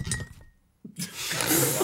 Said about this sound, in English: How that didn't knock that cup of tea over. It very nearly did.